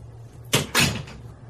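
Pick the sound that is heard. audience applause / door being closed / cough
door being closed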